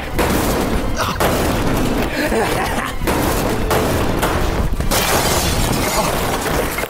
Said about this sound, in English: In every horror movie, they escape the killer by jumping through a glass window.